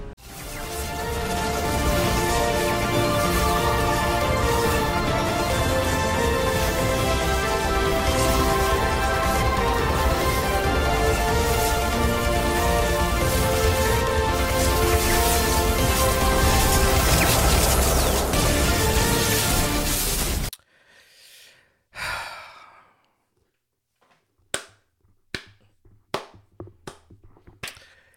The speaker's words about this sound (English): I gotta start the episode like that. Gotta start the episode with some nice claps.